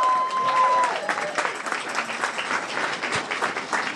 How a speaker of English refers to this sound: Thank you. Amazing, everyone. a round of applause.